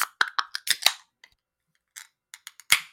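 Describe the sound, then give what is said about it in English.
A can of DDH Full Clip, a double dry-hopped New England style IPA, is cracked open: a run of sharp metallic clicks and snaps, a short pause, then a few more clicks and a louder pop trailing into a brief fizzing hiss that sprays a little. No talking. “Beer number two of our stone face double feature this week of drinking beers is DDH Full Clip.”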